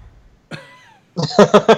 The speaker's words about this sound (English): That's why I've been having coughing fits, because I hit that wax pen.